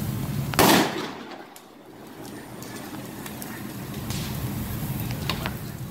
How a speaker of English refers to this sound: there's like a crisping and a crackling like you're at a campfire. You want to hear it? And then, yeah, let's hear it. And then there's like little explosions.